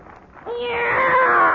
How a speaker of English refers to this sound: Meow! It's a cat, Miss Brooks. I brought him over to keep Minerva company.